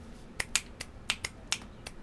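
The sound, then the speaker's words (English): Seven crisp finger snaps at a quick, slightly uneven pace, each a sharp click with a bright crack, over faint hiss and no voices. “Snap.”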